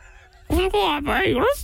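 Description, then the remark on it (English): A person imitates a dog with a Cork accent: one drawn-out, warbling vocal cry, loud, lasting about a second after a brief quiet start. “What I'm looking for is a dog with a Cork accent.”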